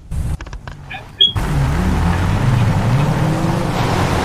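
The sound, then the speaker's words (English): A few sharp clicks and faint electronic beeps, then a car engine rumbles steadily as the vehicle drives slowly to move a traffic stop over to the right, with road and wind noise filling the background. No one speaks. “let's get this traffic stop moved over to the right a little bit more.”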